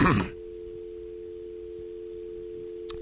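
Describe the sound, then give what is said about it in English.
A steady, low electronic ringback tone hums continuously through an outgoing phone call to Phil Lord and Chris Miller, heard over the line. A brief voice fragment cuts off at the very start. “It's ringing.”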